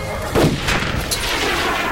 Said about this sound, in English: The air tank went off like a rocket, ripping free of the fence, taking the low one with it, flipping back and crashing multiple times into the concrete, skipping, smashing, and grinding the low one face first along the street,